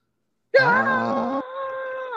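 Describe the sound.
A person lets out one long, strained yell in imitation of a metal scream, a loud, rough, growling tone that thins into a steadier held cry before cutting off after almost two seconds.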